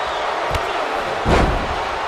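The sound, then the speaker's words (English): The wrestler Guerrero crashes onto the ring mat after going to the top and missing a Frog Splash: a quick sharp smack, then a heavier booming slam, all over a steady, loud crowd roar. “Guerrero up to the top, went for the Frog Splash and missed!”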